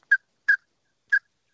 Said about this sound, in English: Pintail whistle. In the background.